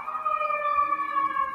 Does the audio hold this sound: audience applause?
no